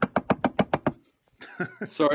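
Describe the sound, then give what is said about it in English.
A quick, even run of about seven sharp knocks of knuckles on wood, followed after a brief pause by someone starting to talk. “Knock on wood if you're with me.”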